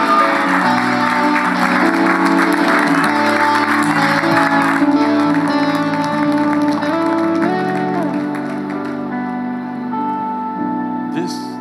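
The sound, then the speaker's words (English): A church audience claps steadily over sustained keyboard or organ chords as a speaker makes his way up to the front. The dense applause holds for several seconds before easing off slightly near the end as the music carries on. “I know we just clapped, but let's clap one more time as he makes his way up here.”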